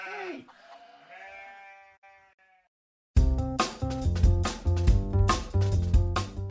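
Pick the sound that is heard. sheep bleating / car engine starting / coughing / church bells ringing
sheep bleating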